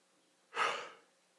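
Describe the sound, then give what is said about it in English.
A single breathy, drawn-out yawn, swelling quickly and then trailing off over about half a second, with quiet around it and no talking. “Kind of wakes up, yawns.”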